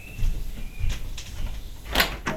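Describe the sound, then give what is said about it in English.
A door is opened in Paris for a parcel delivery: a few soft clicks and knocks from the handle, then a louder rattling scrape as it swings, with low rumble underneath and no one speaking. “Can you get the door, please?”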